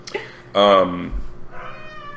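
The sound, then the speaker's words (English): A cat lets out one loud meow that trails off slightly in pitch, followed by a quieter voice speaking briefly. “Kitty, shush. You're not on the podcast.”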